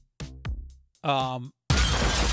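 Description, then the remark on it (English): A voice makes a couple of short, wavering vocal sounds, then bursts into a loud, sustained hiss like a bomb explosion shattering glass on a museum level, apparently imitated by mouth. “The glass shatters and explodes on the entire, museum level.”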